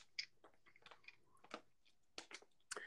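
Someone drinking water: a quiet run of irregular wet mouth sounds, sips, swallows and small smacks, spaced unevenly over a few seconds with no talking.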